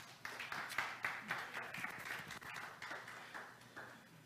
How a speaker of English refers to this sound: Somebody could, if you could give God a hand clap.